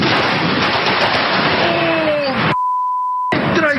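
Loud, steady roar of heavy thunderstorm rain, more than 3 inches falling during a morning drive on Highway 151 in San Antonio, briefly cut off by a sustained electronic beep over silence before the downpour resumes.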